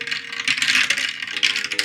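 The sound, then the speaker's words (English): Dice clatter and rattle continuously for about two seconds as a D100 roll is made in a tabletop roleplaying game, landing on 30, a dense, bright run of small hard clicks with a few sharper knocks, with no voices. “Okay, so I got a 30 on the dice, which brings it up to a 55.”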